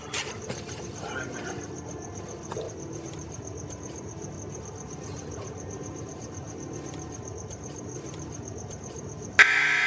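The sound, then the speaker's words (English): A loud, harsh jail door buzzer blares abruptly at the very end as an inmate standing at the door is released on bail, following several seconds of steady low hum with a thin, continuous high-pitched whine above it. “Stand in front of the door. Proceed with Buzz.”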